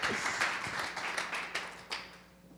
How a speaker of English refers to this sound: Give our guys a round of applause. You guys did great. Thanks.